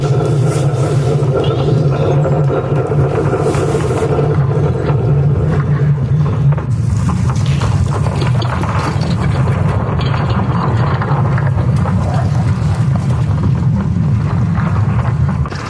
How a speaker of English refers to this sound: But here's your audio for the magnetic field getting hit by solar flares. Wind.